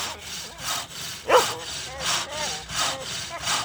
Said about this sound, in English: Anna Maria was about to argue the point when all at once there began to be other sounds up above, the rasping noise of a saw and the noise of a little dog scratching and yelping.